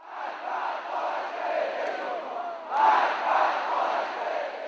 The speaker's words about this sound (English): At another rally in the capital, voters applaud Mr. Rouhani's key opponent in this election, the hardline cleric Ebrahim Raisi